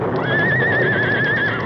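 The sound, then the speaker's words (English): A skittish horse giving its rider trouble gives one long, loud, quavering whinny lasting over a second, its wavering pitch riding above a dense, rough background noise. “was having trouble with her horse. Oh, boy, steady now. Oh, you spooky devil.”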